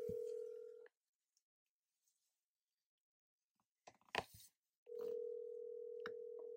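An unanswered phone call: a steady electronic phone tone sounds briefly, then stops for a few seconds of silence broken by a burst of handling clicks, before the same tone returns and holds. No one answers or speaks.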